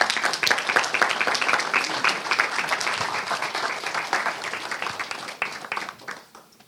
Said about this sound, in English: Let's give God an applause for what he's done.